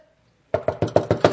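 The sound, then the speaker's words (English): Six loud, rapid knocks on a door in an even, insistent rhythm, someone banging in the rain to get an answer, after a brief moment of quiet. No voices. “If I hit it loud enough, they'll come.”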